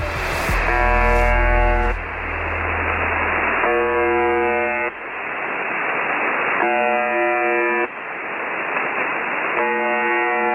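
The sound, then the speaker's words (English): A shortwave radio station's harsh buzzing tone repeats in roughly one-second bursts about every three seconds, riding over a constant bed of loud, hissing radio static with no voices. “This is a recording of a shortwave radio station that's commonly known as the buzzer.”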